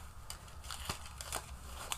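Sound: tarot cards being shuffled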